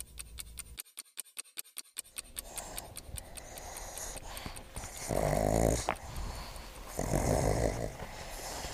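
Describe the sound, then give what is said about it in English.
Pugs playing together, play-bowing and sniffing each other, snort, grunt and growl playfully, with a quick run of clicking scratches early on and two louder, rasping bursts of snuffling noise later. No one speaks. “The pugs are play-bowing each other, sniffing each other's butts, making noise as normal.”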